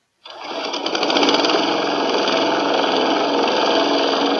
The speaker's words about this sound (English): I'm going to have to stop you there. That sounds more like an outboard motor than a lawnmower. No, it's clearly labelled as lawnmower on the soundboard, though. I can't hear any grass being cut.